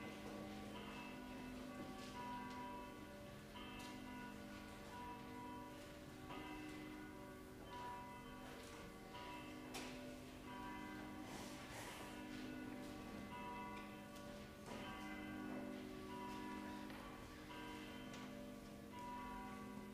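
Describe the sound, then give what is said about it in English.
Church bells ring steadily and continuously to call the audience to worship, their overlapping strikes blending into a rich, resonant peal that fills the space at a strong, even level with no voices. “So all the announcements I have, please stand and the bells will call us to worship.”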